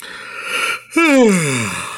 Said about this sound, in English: can you give us an official yawn?